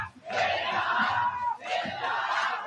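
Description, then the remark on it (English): A wrestling match crowd in Japan chants and yells in two loud, sustained bursts, voices blending into a roaring, rhythmic cheer, unbroken apart from a brief dip between surges. “I swear, it sounds like they're yelling, "Take it off."”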